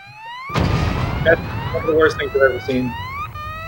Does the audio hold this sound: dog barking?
no